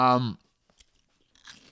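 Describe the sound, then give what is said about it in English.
Close-up chewing and mouth noises: a brief voiced hum at the start, then soft wet clicks and a short crunchy burst right at the microphone, with no clear talking. “No, you're just like chewing into the mic.”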